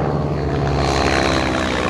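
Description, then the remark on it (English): A small propeller plane with its windows open drones steadily and loudly after takeoff as it turns and heads towards the mountains, its engine hum and rushing wind filling the whole two seconds without a break. No one speaks. “Spins like the plane around, and we start heading towards the mountains. And it's noisy.”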